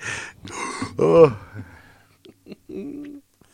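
gasping

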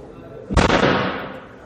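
door slamming

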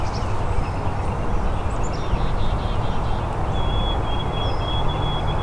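black-capped chickadee song

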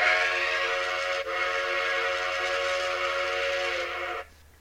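train whistle sound effect

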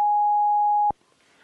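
censor beep

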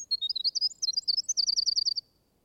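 songbird singing

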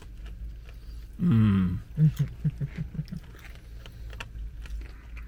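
people chewing food

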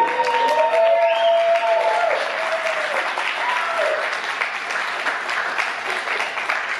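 audience clapping and cheering

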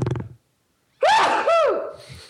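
loud human sneeze

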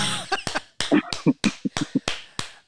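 clapping

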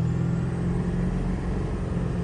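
car engine roaring

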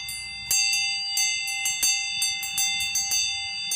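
loud ringing bell

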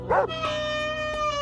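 dog barking and whimpering

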